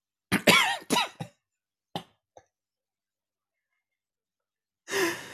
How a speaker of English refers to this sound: I have to like fully cough, so everybody shut up. I mean, no, actually, talk amongst yourselves for a minute because I have to fully cough.